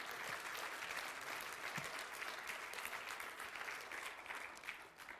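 An audience claps for joy, steadily and loudly for about five seconds, a dense wash of many hands with no pauses, easing slightly toward the end. No one speaks over it.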